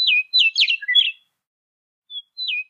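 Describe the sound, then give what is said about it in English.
A recorded songbird sings a quick run of clear, warbling whistled notes, pauses for about a second, then adds a short fading phrase. The song is clean and alone, with no voices or background noise. “Compare that to, they had recordings of the eastern bluebird from New York, or the western meadowlark, which is the state bird of Oregon and many other states.”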